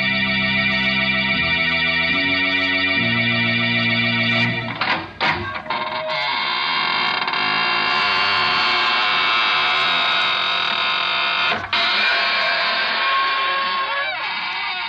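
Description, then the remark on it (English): A few stepped organ chords give way to a long, drawn-out squeaking door, its loud creaking whine wavering in pitch for several seconds with no talking. “This is your host to welcome you through the squeaking door into the land of ghosts, vampires, and other gay, hilarious people.”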